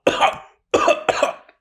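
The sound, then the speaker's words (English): Three harsh, raspy coughs in quick succession, fairly loud, with a brief pause after the first and the last two nearly running together. No speech. “As this acid seeps into their skin and this poisonous gas fills this part of the bridge they are standing on, they start coughing”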